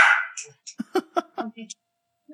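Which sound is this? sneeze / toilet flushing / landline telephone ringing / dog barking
dog barking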